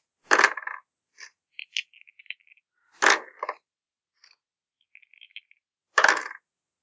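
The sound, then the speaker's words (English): Dice clatter onto a hard table three times during a tabletop game, each roll a sharp burst followed by a few small rattling bounces, fairly loud with quiet gaps between; one player rolls two dice. “Are you only rolling one die? I'm rolling two dice because I've misplaced my...”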